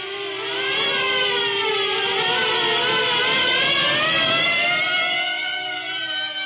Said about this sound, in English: At the sound of the sirens, Marv's huge bulk quivered.